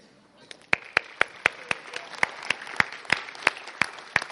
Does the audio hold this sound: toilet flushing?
no